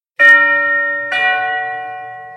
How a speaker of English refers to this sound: Upon arriving at the Zuckman's mansion, or at least to Penelope and Pearson, it appeared to be a mansion, Pearson rang the doorbell, which seemed to resound throughout the entire house.